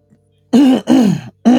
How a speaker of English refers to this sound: If you clear your throat, it'll make it better.